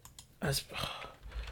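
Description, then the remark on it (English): Quick, irregular clatter of a computer keyboard, a short burst of key presses with a louder cluster in the middle and a low background hum throughout. “I moved my keyboard over so I can have my mic closer to my mouth, so typing's very hard.”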